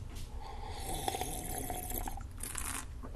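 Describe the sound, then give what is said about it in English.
Close, wet slurping sips of hot coffee, a few airy bursts of drawing in liquid over a low rumbling background, with no talking. “All right, coffee. I could take another sip of that. Get real close to the microphone.”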